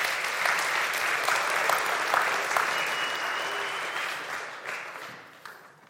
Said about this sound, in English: And as you're in the mood of clapping, could you clap once again?